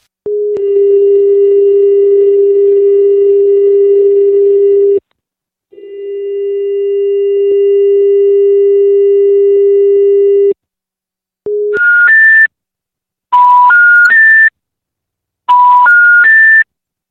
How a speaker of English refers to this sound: Some of the numbers picked up, but with strange tones playing down the line, as you can hear in these next two recordings.